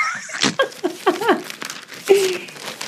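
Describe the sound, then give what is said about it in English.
Old newspaper pages from Flatbush, Brooklyn, New York, dated March 15th, 1873, rustling and crinkling as they are unfolded, a few crisp bursts of paper noise, with brief voice sounds mixed in. “this is the paper I've selected: Kings County Rural Gazette”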